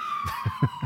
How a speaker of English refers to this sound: Put in a siren. A hot take siren. Like we do.